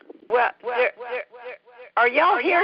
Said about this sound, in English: Are y'all hearing that echo? Yes. I am.